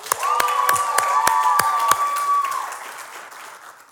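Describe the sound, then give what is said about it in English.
A church audience claps for the kids in Plymouth, Milton and online: steady clapping with a few sharp, evenly spaced claps standing out, joined by a brief cheer or whoop, before the applause fades out over the last second or so. “Can we get a clap for them?”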